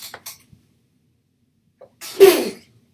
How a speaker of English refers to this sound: I'm about to sneeze.